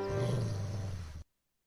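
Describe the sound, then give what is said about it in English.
A wolf lets out one deep, loud growl, rumbling steadily for just over a second before cutting off abruptly into silence. “Also, that's a wolf.”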